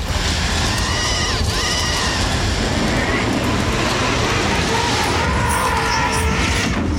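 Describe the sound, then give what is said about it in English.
A strange movie-style fire sound effect: a steady, loud roaring rush with thin whistling tones running through it and a brief dipping swoop early on, holding evenly throughout. “Here's weird fire sound number two.”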